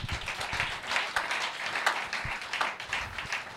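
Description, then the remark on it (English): A crowd claps for the Lord together in a dense, steady burst of applause, many hands overlapping into a continuous crackling roar with a few sharper individual claps standing out. “Oh, give the Lord a clap.”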